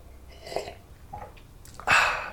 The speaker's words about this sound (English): I'm going to jump in and have my quick sip of my black coffee, which has gone a little bit cold at this stage.